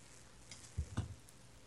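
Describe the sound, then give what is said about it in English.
A few soft, sharp ticks from a countdown clock, spaced unevenly over a quiet background with no talking. The ticks are faint and close together, with two slightly louder ones near the middle. “15 on the clock, please.”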